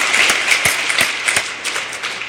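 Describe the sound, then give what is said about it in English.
Steady applause from a church service crowd for the staff, a dense wash of many hands clapping at a fairly loud level, with a few sharper individual claps standing out in a loose rhythm and no voices. “I didn't in the first, but I think we ought to give our staff a round of applause.”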